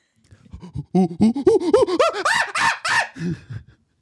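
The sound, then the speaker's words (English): A person imitates a monkey with a quick run of hooting 'ooh-ooh-aah' calls that climb steadily in pitch and grow louder and shriller, ending in a few lower grunts. “Do a monkey, turn your volume down right now.”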